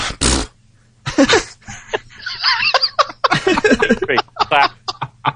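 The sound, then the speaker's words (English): Several abrupt hiccups burst out at irregular intervals, mixed with breathy snickering and chuckling from the same person. “Oh, jeez, hiccups.”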